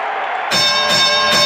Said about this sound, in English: Crowd loving the foul on Hayward as the 30-point bell rings.